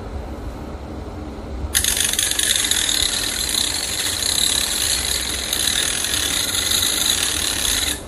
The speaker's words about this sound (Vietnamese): Đấy, các bạn chả cần cái cưa gì, hiện đại là cái cưa bé nhất mini cầm tay này, làm được mọi thứ.